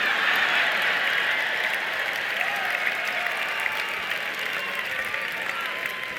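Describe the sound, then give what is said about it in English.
Steady, dense applause from an audience, a continuous wash of many hands clapping at a fairly even loudness for several seconds, with no voices standing out. “Here's one that you won't clap up as much.”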